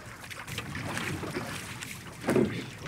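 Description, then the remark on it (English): Small boat being paddled through open sea water on a 9-kilometre paddle, with a soft steady wash of wind and water and one louder splash near the end, with no voices. “They finally arrive after 9 kilometers of paddling.”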